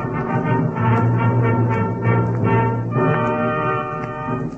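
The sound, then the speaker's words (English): A loud, sustained blast of many trumpets, brassy tones layered together in a dense chord, swelling with rhythmic pulses and shifting pitch midway, with no voices. “There was a loud blast as of many trumpets.”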